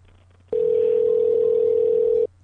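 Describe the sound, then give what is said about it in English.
A single steady electronic ringback tone sounds over a phone line for nearly two seconds, loud and even, then cuts off, with a faint low hum before and after. “Oh, no, it's ringing.”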